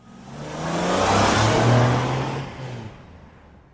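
A race car engine roars past at speed at the Brands Hatch racetrack, its tone swelling loudly then fading off over a few seconds, with no voices.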